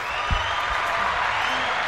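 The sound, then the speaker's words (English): A crowd claps for the women who came, in a steady, dense round of applause that holds at an even level throughout, with a faint cheer or whoop mixed into the clatter. “Yo, round of applause for the ladies that pulled up.”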